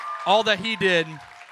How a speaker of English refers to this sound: And so I just want to celebrate him one time, just all of us right now. Big round of applause for Jesus.